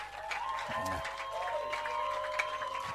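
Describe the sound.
A church audience claps their hands to celebrate God in a steady, continuous wash of applause, layered over sustained musical tones and murmuring voices throughout.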